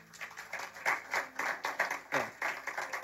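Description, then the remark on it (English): An audience claps together in a steady rhythm for the remission of sins during a sermon, a quick series of sharp, bright bursts at moderate loudness, with no voices speaking over it. “I think you should clap for that.”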